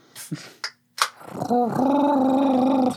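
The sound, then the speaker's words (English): A person imitates a Wookiee roar with a long, loud, wavering growl-howl lasting about a second and a half, preceded by a few short breathy vocal bursts. “Wait, everyone, we're all going to do our best Wookiee sound, starting with me.”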